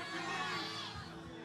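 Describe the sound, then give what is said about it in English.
An audience yells out their favorite Disney movies all at once on a count of three: many voices in an overlapping, unintelligible roar, loud and steady for a moment with no single voice standing out. “Yell out your favorite Disney movie on three. Ready? 1, 2, 3.”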